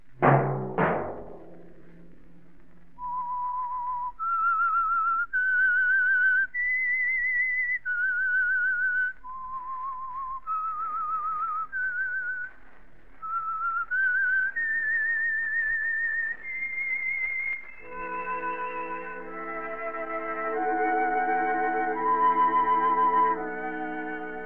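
A lone whistler carries a slow, eerie melody in clear, sustained notes, stepping up and down the scale, before an orchestra swells in underneath to finish the theme. It is the signal of the Signal Oil radio program The Whistler.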